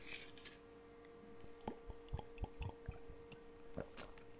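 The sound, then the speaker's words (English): Someone takes a sip of water: a series of soft, wet gulps and mouth clicks, with a faint glassy clink near the end, quiet and without any talking. “So let me just get a drink of water here.”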